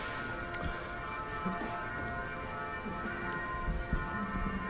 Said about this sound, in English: love those bells.